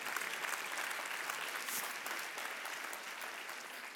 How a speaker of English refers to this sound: Come on, clap for that, it's true.